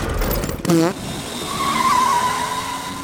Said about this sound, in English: I'm off to test out my new ride. This bathtub car fast or what? Oh, she's fast. Better buckle up, Guy Neville.